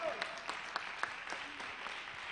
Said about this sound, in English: Give the Lord a big hand clap of praise before you're seated.